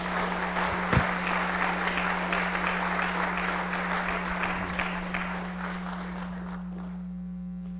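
An audience applauds steadily, a dense wash of many hands clapping at a fairly even level for several seconds before thinning out and fading toward the end, with a low electrical hum underneath.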